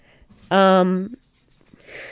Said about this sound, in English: Sorry, my dogs are... being dogs.